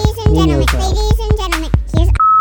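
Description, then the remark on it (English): Rapid, squeaky chipmunk-style chatter with sharp rhythmic thumps, ending in a steady, high-pitched censor beep that holds briefly at the end. “Ladies and gentlemen, here's even the beep is in squirrel.”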